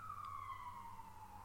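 ambulance siren passing outside

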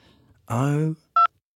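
telephone keypad dialing tones

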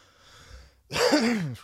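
cough

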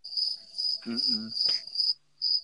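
cricket chirping sound effect

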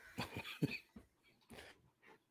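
coughing

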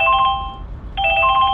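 phone ringtone

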